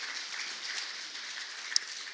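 An audience applauds two volunteers being acknowledged for preparing the kids ministry space, a soft, steady wash of many hands clapping for about two seconds with no voices over it, and a single sharper clap standing out near the end.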